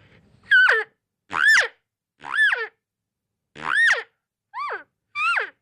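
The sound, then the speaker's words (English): Six elk cow estrus calls blown on a hand call, with the lips vibrated in front of the call, each a short whining mew that starts buzzy, climbs in pitch, then drops away. Loud and spaced with brief gaps, no talking. “If you wanted to get a little estrus call sound in it, you can kind of vibrate your lips with the call a little bit in front of it and get a little estrus sound.”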